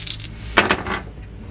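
A quick clatter of dice tumbling across a hard table as an attack roll is made with advantage, a sharp initial impact followed by a few rapid rattling bounces that fade within a second, with faint background hum.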